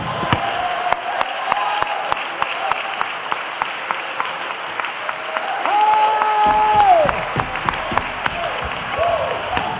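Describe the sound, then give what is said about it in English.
An audience claps and shouts in worship to God. It claps steadily throughout, with sharp individual claps standing out above a dense crowd roar and a sustained cheering cry rising over the applause midway before it settles back. “And all the people ought to clap their hands unto the Lord and shout unto God, because he's a good God.”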